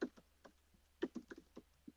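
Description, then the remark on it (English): Irregular keystrokes on a computer keyboard as someone types a Google search for how many words are in the dictionary, about a dozen quick clicks with uneven pauses, fairly quiet, some taps doubling up in short bursts, with no talking. “I'm going to Google it for you, mate. How many words are in the dictionary? Hang on, I'm not very good at typing.”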